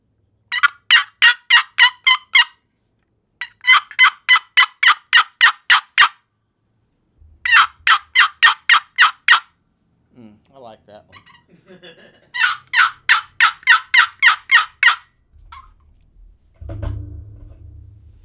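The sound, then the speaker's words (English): Turkey hen yelps played on a wooden box call: four runs of eight to ten raspy, evenly spaced notes with pauses between, followed by a few softer scratchy sounds and a low thump. “Box call, yelp.”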